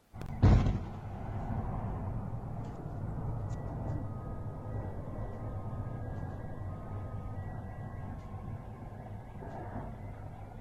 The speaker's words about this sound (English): Here's the footage of one explosion over the Ukrainian capital this morning. Ukrainian has said that the striking began 4 o'clock local time.